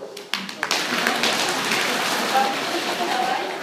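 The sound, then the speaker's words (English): A crowd seated on chairs rapidly drums their hands on their knees in a knee roll, making a dense, steady patter like heavy rain that starts with a few sharp taps and swells into a continuous roll. “If you are sitting on a chair this morning, give me a knee roll.”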